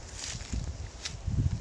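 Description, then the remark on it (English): Footsteps stomp through long grass while walking down toward a water's edge, heavy low thuds mixed with brushy swishes of stalks being pushed aside, a few steps over a short stretch with no talking. “See if we can just stomp through this long grass here.”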